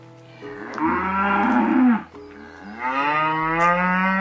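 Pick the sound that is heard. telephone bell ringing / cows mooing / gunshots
cows mooing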